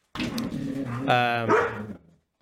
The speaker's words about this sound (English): Your dog's going off. Don't worry about it. We all have dogs.